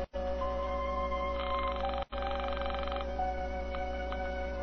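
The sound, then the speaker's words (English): A telephone rings on the line after dialing: a single buzzy ring lasting about a second and a half, heard over a steady low hum with no one speaking. “I dialed and waited for her to answer.”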